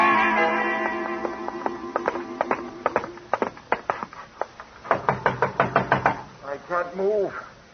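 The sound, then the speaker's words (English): Loud, sharp knocking on a locked door, coming in quick bursts of several raps each. A humming tonal background fades under the first knocks, and a brief voice-like sound follows at the end. “I can't move. The door's locked”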